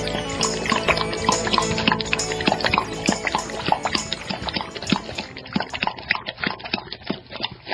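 A dog laps water in quick, steady wet slurps, moderately loud, the rhythmic splashy licks continuing throughout with no voices.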